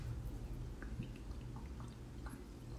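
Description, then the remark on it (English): Gerolsteiner sparkling mineral water fizzes and trickles quietly as it is sipped, with scattered small pops and drips over a steady low hum, without any voices. “I'm drinking my favorite.”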